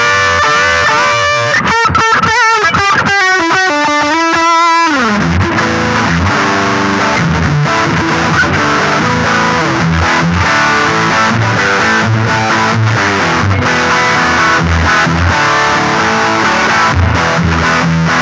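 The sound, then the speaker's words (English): Heavily distorted, high-gain electric guitar played loud through an amp on its dirty channel with the gain cranked up a lot, opening with quick choppy stabs before settling into thick, saturated riffing with sustained crunch and no voices. “And then we crank up the gain a lot and we'll see.”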